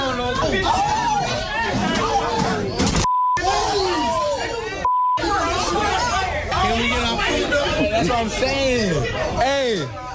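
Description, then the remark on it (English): Dense crowd chatter fills a busy fast-food restaurant, many overlapping voices loud throughout, with a couple of brief electronic beeps cutting through near the middle. “There's not a lot of beeps in there, but there are a lot of people.”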